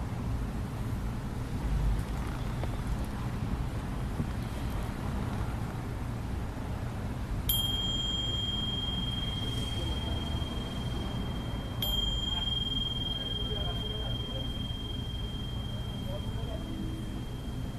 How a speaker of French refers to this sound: Vivre l'expérience de la cloche. Plutôt que son message.